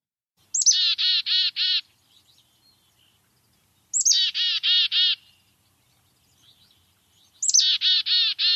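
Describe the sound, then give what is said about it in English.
A black-capped chickadee gives its chick-a-dee call three times, each a quick high note followed by four harsh, buzzy dee notes, clear with short pauses between. “Here is their call. They say their name. They go chickadee-dee-dee-dee-dee-dee-dee.”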